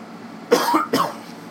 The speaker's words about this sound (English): Sorry. Ooh, that was a cough.